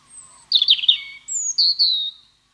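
Birds chirp and sing, a quick run of bright twittering notes followed by several clear, high whistled phrases, with no voices present.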